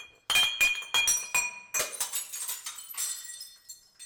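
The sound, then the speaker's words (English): Glass bottles, including a bottle of Jack Daniels, clink together in a quick, uneven series of bright, ringing taps, with a few sharper knocks early on and lingering high tones trailing off as the clinks fade. No one speaks. “Let's get out our bottle of Jack Daniels, pass it around, make sure the odds makers get an extra big swig”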